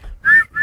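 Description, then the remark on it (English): Two quick, shrill whistle blasts sound loud, the second cut off at the end, with no voices present. “Yeah, blow the whistle.”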